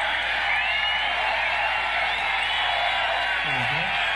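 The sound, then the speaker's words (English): A large crowd at a Trump rally in Florida cheers steadily throughout, a dense, continuous roar of many voices with scattered shouts and whoops, holding at an even level without pause. “Okay, so then the crowd cheers for a while,”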